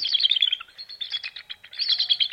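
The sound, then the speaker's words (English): A pair of bald eagles getting ready to nest call in rapid, squeaky, chittering bursts, high-pitched and piercing, with short pauses between flurries of notes. No one speaks. “That odd call that sounds like a rusty gate? We're actually hearing a pair of bald eagles, and they're getting ready to nest.”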